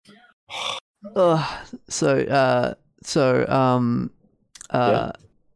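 Loud heavy breathing into a microphone by a man who is focused on drawing: a series of about five drawn-out, voiced breaths and gasps with short pauses between them, with no words spoken.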